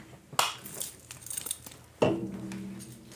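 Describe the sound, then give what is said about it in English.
A sample glass for beer is fetched and handled: a sharp knock, some faint rattling and shuffling, then a second louder clink that rings briefly, with no talking. “I should find a sample glass, eh?”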